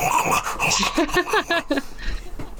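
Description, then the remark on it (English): A dog growls and whimpers, a run of short whiny, strained vocalizations broken by rough growly breaths, with no one talking. “Which is not good audio, River. It is for my dog podcast.”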